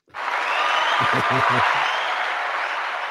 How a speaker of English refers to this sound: Where's a round of applause for that? Yes. Clap, clap, clap.